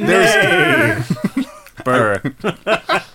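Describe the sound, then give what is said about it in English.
A person's voice imitates the neighing of kicking horses hitched to an overturned cart: a long, wavering whinny, followed by short breathy snorts and a second quivering whinny, with chuckling bursts mixed in. “The horses attached to the tripped wagon are kicking and neighing.”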